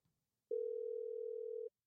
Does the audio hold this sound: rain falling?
no